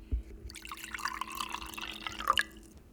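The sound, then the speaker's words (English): A cocktail of Tito's vodka and lemon juice, shaken with ice, is poured from a shaker: a steady trickling stream of liquid with small drips and splashes, fairly quiet, ending in a brief final splash. No one speaks. “And then pour it out.”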